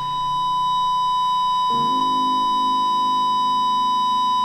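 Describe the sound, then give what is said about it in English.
A steady, unbroken electronic tone, like a flatline monitor beep, holds one pitch for the whole clip in a church during a Christmas Eve celebration, over a low background hum that shifts partway through. “This beep is from the, is in the church, not my computer. I guess it's a flatline thing.”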